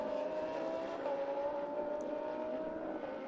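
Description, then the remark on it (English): A race car engine holds a steady, loud droning whine at nearly constant pitch as the number 22 car pulls out of the pit lane after its pit stop, with no voices present. “22 car exiting the pits after his pit stop.”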